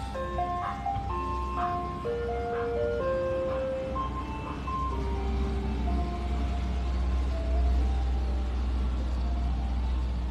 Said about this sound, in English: Oh, and now the ice cream truck's here. Again, they're making an appearance for our show.